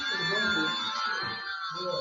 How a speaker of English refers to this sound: Has someone pulled an alarm? What's that? Has someone pulled an alarm? It's going off for here. Have you pulled an alarm?